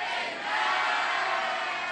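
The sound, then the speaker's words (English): A large church audience shouts amen together in one loud, sustained collective roar for a couple of seconds, many voices blending into a single wash of sound. “Those at the back, did you say amen?”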